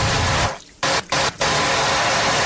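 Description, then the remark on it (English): Loud, steady rush of water gushing through the pipes of a ship's water system as it is checked, broken by a few brief sputtering gaps where the flow cuts out before surging back strongly. No voices. “This is a scene where Fear the Walking Dead guy is over on the other ship and they're checking the water system, and it scared me.”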